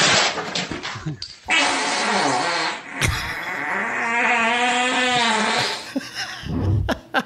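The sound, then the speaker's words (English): A loud, drawn-out fart from a woman in a commercial, lasting several seconds, buzzing and sputtering with a wavering pitch that rises and falls before trailing off into a few brief pops at the end. “Epic fart.”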